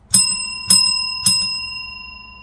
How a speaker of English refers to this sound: So I'm going to ring a bell and then switch to spoilers.